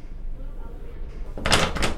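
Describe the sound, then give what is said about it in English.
After a stretch of low, quiet rumble, the handle of a locked door in a hospital is jiggled and rattled hard, a short burst of metallic clattering as someone tries to open it. “What, did you think confidence worked on locked doors, too?”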